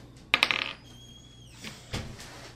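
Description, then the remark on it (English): Dice rolled for a skill check in a tabletop game clatter across a hard tabletop in a quick burst of sharp, bright clicks that ring briefly as they settle, followed by a couple of softer knocks. No one speaks. “I roll the lowest thing possible.”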